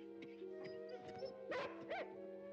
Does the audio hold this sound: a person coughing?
no